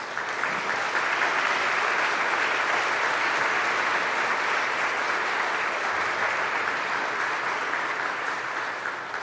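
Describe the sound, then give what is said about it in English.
An audience applauds steadily for the spouses, partners, parents and mentors of those being confirmed or received, a dense, even wash of many hands clapping that holds at a constant level for about nine seconds before easing slightly at the end, with no voices. “So if that describes you, would you please stand up so we can give you a hand of applause?”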